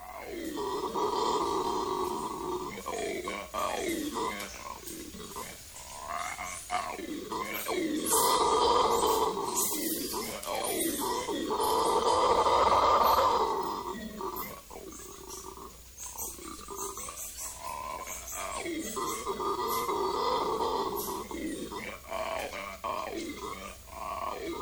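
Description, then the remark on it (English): Venezuelan red howler monkey calls, a South American New World monkey found in the Amazon basin in Venezuela: deep, guttural grunting roars that swell and fade in long overlapping waves, steady and fairly subdued rather than booming, with no talking. “That is the Venezuelan red howler monkey.”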